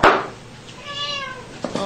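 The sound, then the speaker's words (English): A cat lets out a drawn-out, wavering meow while being spanked, after a brief noisy burst, followed by two quick soft pats or taps at the end. No one speaks. “The spirit animal is a cat that likes to get spanked.”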